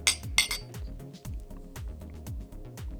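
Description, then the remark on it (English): Glasses of hazy IPA beer clink together twice in a toast in quick succession right at the start, bright with a short ringing tone, over a steady low pulsing hum in the background. “All right. Cheers. Cheers, guys.”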